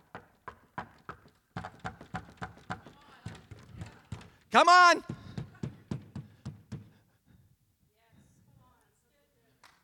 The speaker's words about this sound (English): my knuckles are sore. Then use your elbow. Keep knocking.